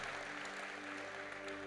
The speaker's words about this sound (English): Come on, won't you, good God? And clap when you stand to your feet.